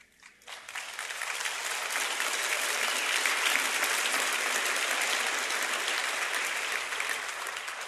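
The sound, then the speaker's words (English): An audience breaks into sustained applause, a dense wash of clapping that swells within the first second and holds steady and loud for several seconds without any voices. “I don't usually get applause, so I'm going to quit while I'm ahead.”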